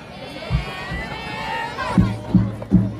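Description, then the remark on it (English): A homecoming football crowd in Wayland, Iowa cheers in a steady, dense roar during a football game, with a few deep, booming thumps punching through, three in quick succession near the end. “And boy, did the crowd have a lot to cheer about.”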